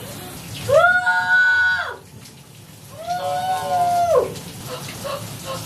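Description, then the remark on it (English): A shower turned to freezing cold runs with a steady, hissing spray in the background, while a voice lets out two long, high-pitched wails over the water, each lasting about a second. “I hear the shower.”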